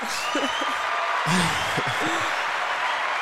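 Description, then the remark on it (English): A large crowd applauds steadily for a few seconds, a dense wash of clapping with scattered voices and whoops mixed in, holding at an even, fairly loud level throughout. “Yeah, it's a big crowd. We'll let them settle down a little bit.”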